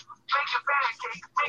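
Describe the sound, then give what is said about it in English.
A phone rings with a bright, melodic ringtone, playing a few quick back-to-back tonal phrases over a faint low hum. “Somebody's got a phone call.”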